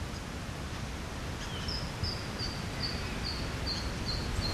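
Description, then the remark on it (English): Helmeted honeyeaters, at least two just-released birds, call from above in a tiny bush reserve at Yellingbo near Melbourne, in a steady series of thin, high, repeated notes, fairly faint, over a constant low rustle of wind and bush. No one speaks. “And we've actually got some of these birds above us now.”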